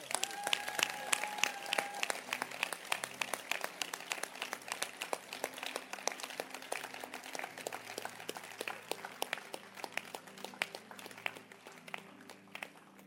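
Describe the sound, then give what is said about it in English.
A church audience claps their hands at the pastor's request in a steady burst of dense applause lasting over ten seconds, with some high tonal sounds early on and low sustained tones underneath. “Can you clap your hands?”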